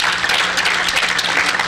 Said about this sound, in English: Come on, give God a hand clap of praise if you love those moments.